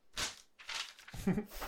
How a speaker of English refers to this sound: Yeah, there you go. Sorry, there's me turning the page.